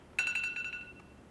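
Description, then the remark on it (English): A timer alarm goes off with a quick run of high-pitched electronic beeps, pulsing rapidly for about a second before cutting out. No one speaks over it. “Oop, there's my timer.”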